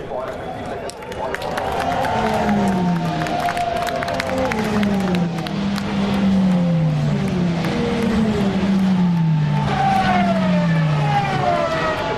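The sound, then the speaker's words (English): Several race cars roar past one after another at Le Mans, completing the first lap at racing speeds with a Peugeot leading; engine pitch rises and sweeps down as each goes by, loud and continuous over a background murmur of crowd noise. “There'll be a big roar as they come through here from the French.”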